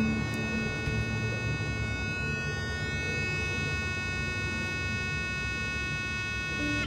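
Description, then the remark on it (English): A long, unbroken electronic beep from an interview recorder at the start of a mock AC-12 interrogation-room interview holds one steady pitch with a buzzy, harmonic-rich tone for the whole stretch, over a low background rumble, with no one speaking. “And they've cut in Boris shaking his head like he's in the interrogation room, full on, the big long beep at the beginning and everything.”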